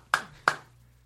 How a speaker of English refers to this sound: Oh, your headphones falling off?